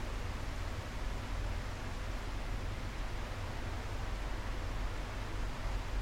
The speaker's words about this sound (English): Hello, my dear. I'm sitting outside in my balcony and it's raining.